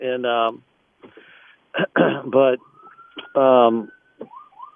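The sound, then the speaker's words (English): An ambulance siren wails faintly behind a vehicle, its thin rising tone holding steady for a moment before gliding again, while a person talks loudly over it in short bursts as the driver tries to get out of the ambulance's way. “I'm trying to get out of an ambulance's way. I guess you can hear him behind.”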